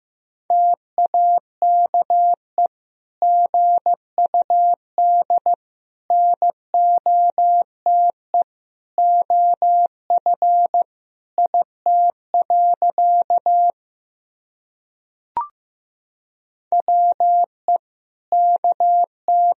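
Morse code sent at 15 words per minute, practice sentences from the top 500 words and abbreviations, as a steady mid-pitched beep keyed into short and long tones, grouped into words with brief gaps, and a single sharp click partway through. No voices.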